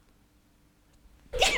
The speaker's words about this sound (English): Excuse me, I just need to sneeze. It's better to announce it than to shock you all.